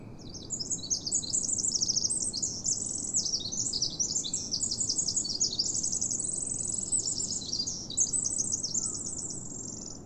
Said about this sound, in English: This song is from a Pacific wren, and it might be the smallest bird species here, but it packs a mighty song. Pacific wrens creep along the ground and under logs and upturned tree roots like little avian rodents.